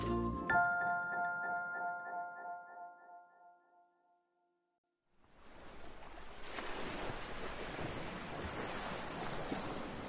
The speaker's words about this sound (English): We're at the beach. Wow, look at those ocean waves. I love how the ocean looks like it can go on forever.